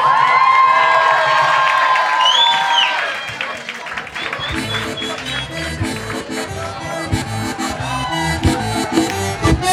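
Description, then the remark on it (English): A packed club crowd in Lower Manhattan, New York City, cheers and whoops loudly for a few seconds on Colombian Independence Day, July 20th, then a band kicks in with a driving rhythmic beat while the crowd noise carries on underneath. “It's July 20th, and I'm in a packed club in Lower Manhattan. It's a Wednesday, but it's also Colombian Independence Day, and the crowd is ready to party.”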